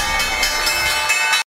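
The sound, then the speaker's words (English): A stock exchange closing bell rings loudly and steadily, its bright metallic clang pulsing in rapid strikes for about a second and a half before cutting off abruptly. No voices. “The bell rings.”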